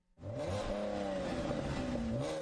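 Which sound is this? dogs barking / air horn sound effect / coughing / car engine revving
car engine revving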